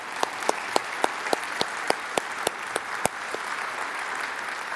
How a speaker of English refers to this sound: You want to clap? Let's go. Let's clap for that. That's awesome.